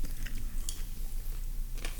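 Someone chews ice, a few sharp, crisp crunches spaced irregularly over a low, steady rumble as the ice is bitten through. No one speaks.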